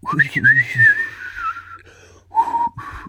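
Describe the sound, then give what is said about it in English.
Someone whistles a brief Western-style showdown melody: a long, wavering held note that slides in pitch, a short pause, then a couple of shorter, lower notes. “There's a little bit of a whistle.”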